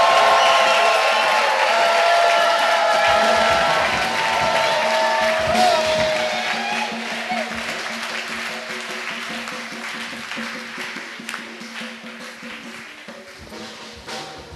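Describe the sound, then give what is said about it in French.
A crowd claps for the Lord and cheers with scattered joyful shouts, loud at first and gradually fading over about fifteen seconds, with dense clapping texture throughout and some voices rising above it. “Let's clap for the Lord again with shouts of joy.”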